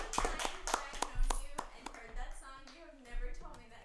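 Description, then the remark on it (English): A brief round of applause from a small group following a song about Grover Cleveland, sharp scattered hand claps in the first two seconds that thin out as voices and chatter take over. “A round of applause.”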